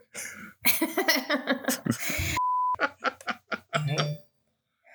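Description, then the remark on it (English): A phone notification chimes once as a short, steady, mid-pitched electronic beep, cutting in between bursts of laughter and chatter from several people. “You gotta mute your phone.”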